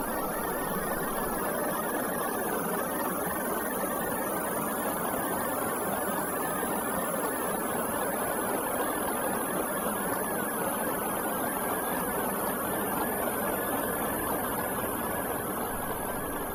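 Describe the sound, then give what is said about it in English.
A synthesized granular texture, containing no actual river sounds, imitates a flowing river: countless tiny grains of sound packed into a dense, steady rushing hiss that holds an even loudness throughout, with no voices. “Instead, it imitates a river using granular synthesis, a process by which small units of sound are produced and tightly packed together to create pitch and amplitude, much like the individual droplets in a river.”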